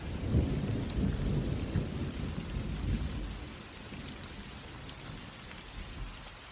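Steady rain patters down while low thunder rumbles through the first few seconds, then fades into a softer, continuous shower of drops. No voices are heard.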